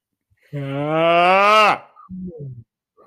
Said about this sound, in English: I know you did not just yawn on this here podcast. No. It was more like a very interesting whale sound.